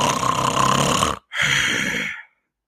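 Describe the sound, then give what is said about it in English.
A voice imitates snoring while asleep in the front row of a church service, with two loud, raspy breaths: a long drawn-in snore, a brief pause, then a shorter one. It is alone, with no talking. “I bet I was snoring in between Jesus.”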